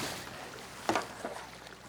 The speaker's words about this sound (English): Okay, so here we are. It's a beautiful day in the San Francisco Bay. I've got my trusty kayak plopping it into the water.